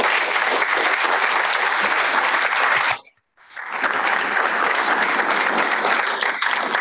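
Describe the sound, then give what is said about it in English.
A crowd breaks into loud, sustained applause for triathlete Chris Nikic, dense and steady, which cuts out abruptly for a split second before surging back just as strong and continuing to the end. “Help me give a big round of applause and for Chris Nikic.”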